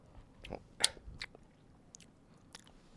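Crunching as a hard sweet is bitten, a few sharp, crackly snaps with one louder crack, then softer wet mouth clicks as it is sucked. Quiet overall, no talking.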